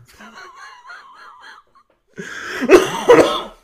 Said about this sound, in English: I'm sorry, listeners. I have the coughs. I'm going to try and edit these out, but just in case.